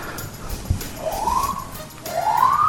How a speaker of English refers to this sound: And the sirens sound for David Wallace's question.